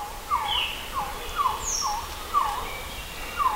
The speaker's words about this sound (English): So I poured a quetzal, which is a bird usually found in the rainforest of Guatemala. And it sounds a little bit like this.